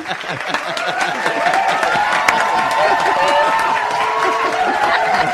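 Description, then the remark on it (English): An applause and cheering sound effect: a loud crowd claps and cheers continuously, with whoops and shouts rising over steady dense applause, a lively sustained ovation from a big audience, played on the Franchise Business Radio Show to celebrate the announcement of a new sponsor. “This audience is going out of control here.”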